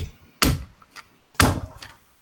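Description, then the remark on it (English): Fists thump down hard on a table twice, about a second apart, each heavy blow followed by a lighter knock, beating out a percussive rhythm during a speech. Loud and percussive, with no talking. “Throughout this whole speech, I've been thumping my fists on the table to create like a percussive beat.”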